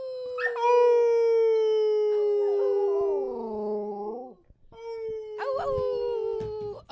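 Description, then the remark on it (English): A dog named Charlie lets out long, sustained howls, one drawn-out howl followed by another after a brief pause, with a second wavering howl joining partway through the first. “Let's do a howl sesh.”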